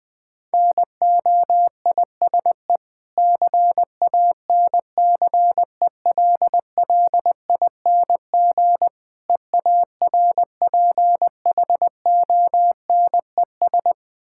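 A single steady beeping tone keys on and off in quick Morse code dots and dashes, about twenty words per minute, with brief pauses between characters and words and no voices.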